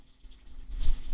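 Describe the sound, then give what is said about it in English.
Water runs in a brief, steady rush that swells louder near the end, with a low rumble underneath and no voices. “Let the water happen for a minute.”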